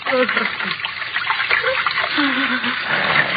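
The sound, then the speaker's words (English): Water rushes strongly through a large sewer in a steady, continuous roar that fills the whole stretch, with a voice speaking faintly over the churning flow. “The water runs quite strongly here, doesn't it? Huh? The largest sewer of them all.”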